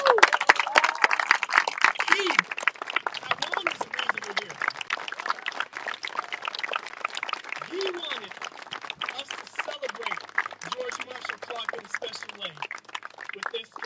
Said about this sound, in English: I want you to stand up, and we need to give him a round of applause.